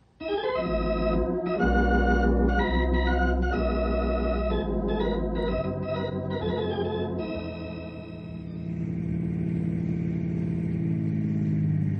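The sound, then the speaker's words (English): A car engine runs loud, its steady droning hum shifting in pitch as it revs, then settling into a smoother rumble as the car drives on. No one speaks. “Let's get in the car.”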